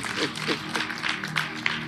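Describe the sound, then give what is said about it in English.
A church audience claps hands while praying for one minute, a steady, dense patter with faint murmuring voices mixed underneath, sustained at moderate loudness. “Clap your hands and pray 1 minute.”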